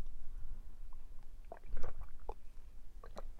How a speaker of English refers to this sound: So let me take my own sip of my cup of Joe.